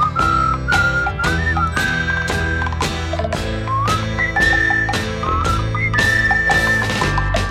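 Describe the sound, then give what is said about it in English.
A bright whistled melody rides over a bouncy song with a 1920s British music hall sound: steady, regular percussive hits that sound like banging on coconuts and light jingling Mellotron chimes, lively and upbeat throughout with no voices. “And a happy little whistling tune.”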